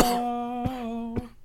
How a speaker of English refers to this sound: Perfectly timed cough.